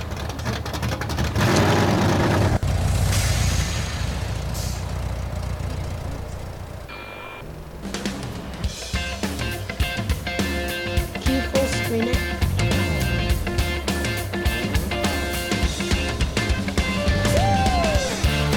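A loud rock song plays, opening with a dense, rumbling, engine-like wash before a brief lull, then a full band with a driving, steady drum beat kicks in. No one speaks.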